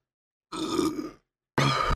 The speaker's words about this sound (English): Wow, that was a pussy-ass burp. It's because I held it in and some of it came out the other end.